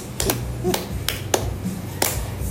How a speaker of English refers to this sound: I wish I had started faster with a slow clap. All right, sorry. You started with the fast clap and went to slow. I did.